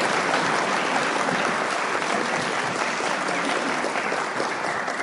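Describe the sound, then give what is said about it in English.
A crowd at a recovery group meeting applauds the group's secretary for about five seconds, a dense, even wash of many hands clapping at constant loudness with no voices heard over it. “And now I'm going to ask you for another round of applause”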